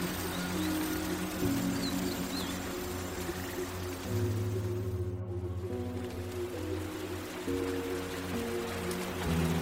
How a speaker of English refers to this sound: With each drop of rain that caresses the cabin, take a deep breath in, drawing in the tranquility and purity of the forest air, rejuvenated by the rain.